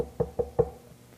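A three-year-old girl gives three quick, evenly spaced knocks on a wooden door, distinct, followed by quiet; no one speaks.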